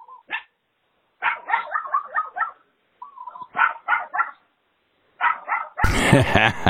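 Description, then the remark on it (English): A dog barks and yips on a voicemail in quick clusters of short, high-pitched barks separated by brief pauses, before a loud, harsh noisy burst cuts in at the end. “That's it's just the dog barking.”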